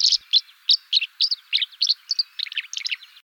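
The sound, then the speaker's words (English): Swallows chitter in a rapid series of short, bright twittering notes, signalling their discovery of a hatch of river mayflies, a dozen or so quick bursts in steady succession, clear with no other sounds around them. “Chittering swallows signal their discovery of a hatch of river mayflies.”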